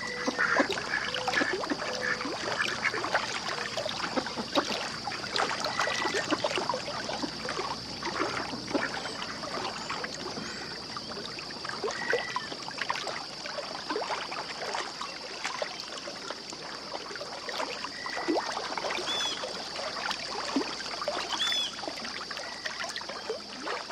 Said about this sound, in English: … followed the Hudson River from the Adirondacks down to the Atlantic. She recorded the ebbs and flows for a CD she calls ….